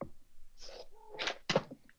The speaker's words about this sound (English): You all right there, buddy? Yeah, my cat just snuck down and started jumping on me.